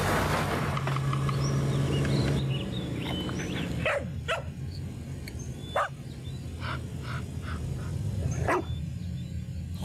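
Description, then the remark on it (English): A dog barks several times in short, irregular bursts, loud, over a steady low rumbling background with no talking, in a Subaru Forester Wilderness advertisement. “Dog tested, dog approved.”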